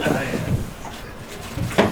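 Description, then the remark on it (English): A drawer holding an herb grinder slides open with a brief scraping rumble, followed by a sharper knock near the end, while people talk in the background. “There's a grinder in that drawer right there”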